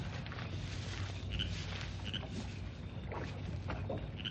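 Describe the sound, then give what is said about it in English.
Oars dip and splash in a steady rhythm as a rowboat is rowed out across a calm lake, with soft creaks and lapping and no voices. “He left the boat over there. I'll just row out and be sure of what he's doing.”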